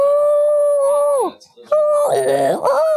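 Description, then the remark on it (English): A person imitates an elk bugle: two long, loud, high whistling wails, the first sliding down at its end, the second turning rough and grunting midway before rising again. “What's the elk noise?”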